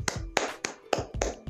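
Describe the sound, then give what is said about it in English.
Six light hand claps in a steady, even rhythm, soft, with nothing else around them. “Just a light clap.”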